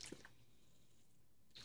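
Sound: drinking water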